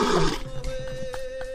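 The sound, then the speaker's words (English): A short, gravelly lion roar sound effect bursts out loudly for a fraction of a second, then drops away, leaving a thin steady hum underneath. No one speaks. “It's supposed to be a lion roaring.”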